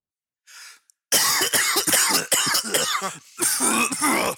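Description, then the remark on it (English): A quick intake of breath, then a loud coughing fit: rapid, harsh hacks tumbling one after another, a brief catch of breath, and another burst of coughing. “You know what I could use? A used cough drop.”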